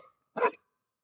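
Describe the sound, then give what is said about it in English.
A single short bark from an unhappy female dog approaching others, one sharp burst in an otherwise quiet moment, with a faint trailing sound just before it. “And then she just got toward them and kind of barked.”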